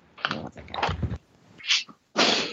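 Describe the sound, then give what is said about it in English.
A person coughs in a rough burst of about four harsh, breathy hacks in quick succession, loud and raspy, with no talking around them. “Sorry, I had to cough.”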